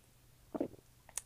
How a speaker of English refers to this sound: For anyone who is totally offended by my swallowing, I'm so sorry.